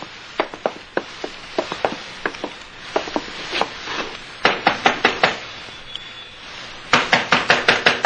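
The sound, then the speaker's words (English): Sharp knocks rap on the wooden door of the skipper's cabin, where the skipper is sleeping, in several quick bursts, the last group louder and more insistent, with no voices. “Try the door.”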